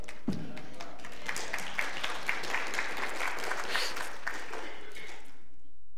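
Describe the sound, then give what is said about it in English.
An audience at a church sermon breaks into applause: a dense, steady patter of many hands clapping for about five seconds before quickly dying away into silence. “But see, that wasn't said for applause or attention.”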